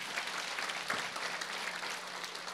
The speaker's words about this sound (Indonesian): Tepuk tangan buat Tuhan.